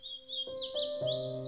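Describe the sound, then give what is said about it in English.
Wild birds sing in quick, high, warbling phrases that rise and fall without pause, with a steady low tonal hum underneath and no voices; captured by recording devices left at Spooky Hollow. “later study to find out what birds may be singing here when no one is around to listen.”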